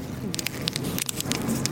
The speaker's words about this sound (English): It looks like a shiny trampoline. There's like five hair-thin layers to it. And it's made of this crinkly material that looks like what Mylar balloons are made of, honestly.